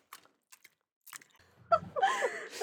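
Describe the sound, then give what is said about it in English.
A few sharp, wet mouth clicks, then a burst of loud, open-mouthed crunching and chewing with smacking saliva sounds, as someone eats with their mouth open. “Yeah, because it sounds like someone is eating with their mouth open.”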